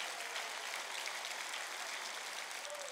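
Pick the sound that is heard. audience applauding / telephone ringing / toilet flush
audience applauding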